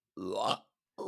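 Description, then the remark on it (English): A loud burp lasting about half a second, with a rising guttural tone, followed by silence and the start of another voiced sound. “I got a burp.”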